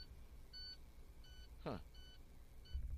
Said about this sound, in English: Yeah, there go that beeping noise. Beeping noise haven't been beeping all damn day, and now it's going to start beeping. Hopefully it ain't nothing serious.